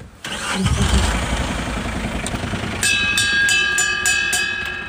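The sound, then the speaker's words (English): A small tourist road train's engine in Malahide, Dublin, starts up close by and runs with a steady, loud rumble; partway through, a high tonal whine joins in, broken by brief rhythmic pulses. “we're all blessed to be standing beside Toots, the Malahide Road train.”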